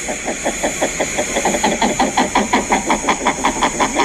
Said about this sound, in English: Males and females chatting there. Somateria spectabilis, the king eider, today's Talkin' Birds featured feathered friend.